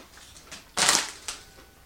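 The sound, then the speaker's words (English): A loud, crackly crunch as a TGI Fridays cheddar and bacon potato skins chip is bitten, followed by a shorter second crunch and a few faint chewing crackles, with no talking. “I like the shape. Lots of crunch.”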